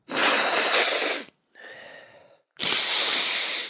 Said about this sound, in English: Sorry, I got to take my nasal spray real quick.